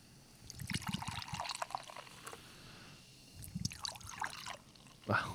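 A watermelon fruited farmhouse beer pours into a glass, a gurgling, splashing stream in two bursts with fizzy bubbling between them. There is no talking over it.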